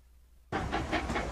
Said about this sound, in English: So you're on a scenic train ride through Southwest Colorado when suddenly you see.